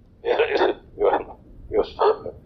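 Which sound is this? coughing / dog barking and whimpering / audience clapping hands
coughing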